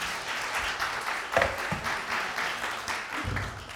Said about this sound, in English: Yeah, they could use a round of applause.